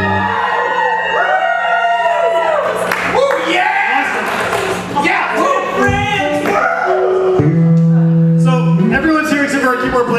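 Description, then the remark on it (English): A group of people whoop, yell and cheer together, high yips and sliding shouts piling up into a loud, continuous racket that lasts about ten seconds. “At least you guys can do is pretend there's a big crowd here and make a bunch of noise so on the recording it sounds like...”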